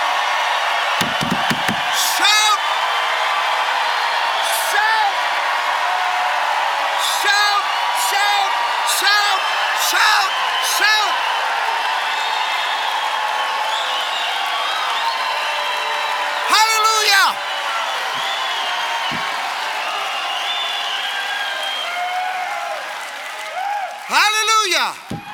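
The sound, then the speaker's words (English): A large crowd cheers and shouts in praise continuously, with repeated high whoops and yells rising above a steady roar of voices and clapping, loud throughout. “Clap your hands, all ye people. Shout unto God.”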